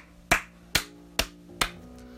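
hands clapping

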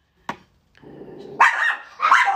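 dogs barking

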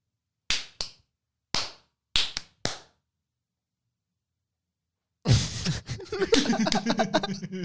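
hand clapping

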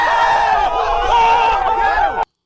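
applause and cheering

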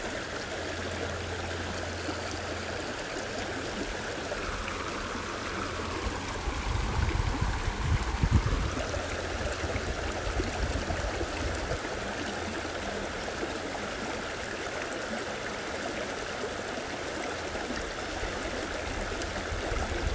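water flowing

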